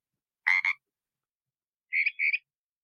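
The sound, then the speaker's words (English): A Pacific tree frog's two-part ribbit, then after a short pause a mockingbird's higher, purer imitation of the same double call. Both are clear, with silence between them. “The first sound was the ribbit call of the Pacific tree frog. The second one was a mockingbird mimicking the Pacific tree frog.”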